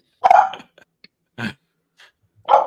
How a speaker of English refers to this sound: Oh, Bella's barking at the TV. She's watching the game.